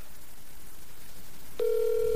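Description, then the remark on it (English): A phone call to parents in Memphis, Tennessee rings out over a speakerphone: after a stretch of faint background noise, a steady electronic ringback tone starts up and holds, fairly loud and slightly tinny, with no one talking. “Put it on speakerphone and put it up to the butt end of that phone. Let's wake up your parents out in Memphis, Tennessee.”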